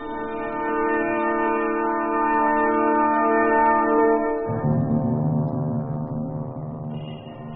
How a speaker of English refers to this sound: We are fortunate to hear Big Ben, comrades. Big Ben's chimes had not been ringing for some time.